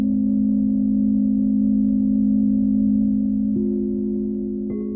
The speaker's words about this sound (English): They brought the singing bowls that she'd found so calming to a recording session in a historic Music Row studio. Now the bowls' crystalline tones cocooned her listeners between songs.